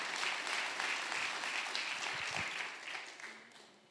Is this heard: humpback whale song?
no